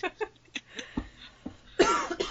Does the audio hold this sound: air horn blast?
no